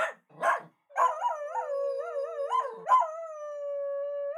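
A miniature schnauzer lets out two quick, sharp barks, then breaks into a long, wavering howl that rises and falls before settling into a steady held note, clear with no talking.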